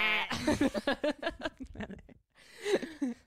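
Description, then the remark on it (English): A person imitates a goat's bleat, a wavering, pulsing nasal voice lasting a couple of seconds, followed by a short pause and another shorter bleating vocal burst, fairly loud. “I like that goat noise that all the girls are doing at the moment.”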